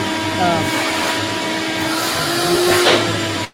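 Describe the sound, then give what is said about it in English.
A vacuum cleaner runs steadily, a loud continuous roar with a motor whine layered on top, holding level for several seconds before cutting off abruptly. “I muted you for a second there for the vacuum.”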